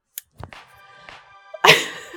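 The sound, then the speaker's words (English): A single loud sneeze: a brief voiced build-up, then a sudden forceful burst of breathy noise that trails off at the end. No one speaks. “Bless you”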